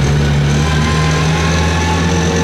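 A truck's heavy engine rumbles loudly and steadily as the truck passes by, a deep droning hum that stays constant throughout, with no one speaking.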